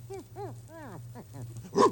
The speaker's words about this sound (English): Oh, it's only a dog. Here, doggy, doggy.